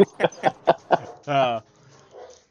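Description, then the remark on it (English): A dog named Zeus barks five times in quick, even succession, then lets out a longer, drawn-out yowl before things go quiet. The barking is loud. “Someone's at dogs have a hot take too.”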